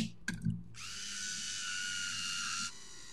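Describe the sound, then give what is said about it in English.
A few quick handling clicks, then a steady electric motor whir runs for about two seconds as an electric wine opener draws the cork from a bottle of red wine, before cutting off abruptly. “You need to have an electric wine opener.”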